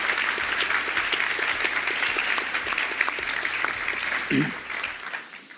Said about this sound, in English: So first, the creator of Elixir and chief adoption officer at Dashbit. So give a warm round of applause and a warm welcome to